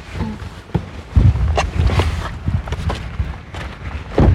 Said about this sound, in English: Okay, it's really shitty out. You can hear the rain hitting my jacket. Well, it's actually not rain now. This is ice pellets. It's fucking ice pellets.